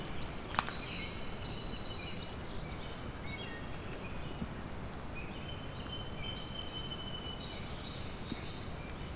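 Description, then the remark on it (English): High, thin bird song of a brown creeper behind the listener, a few faint wiry phrases repeated over a steady hiss of outdoor background noise, with no one speaking. “And there's a brown creeper song now behind me.”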